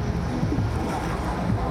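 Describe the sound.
The Pontoon Saloon, a pontoon party boat, passes on a river, its steady low rumble and washing water filling the short stretch at moderate loudness, with faint voices mixed in.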